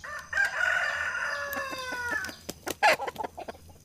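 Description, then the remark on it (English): A rooster lets out one long, loud cock-a-doodle-doo that trails downward at the end, followed by a few short, sharp clucking sounds. “Just then, a rooster crowed.”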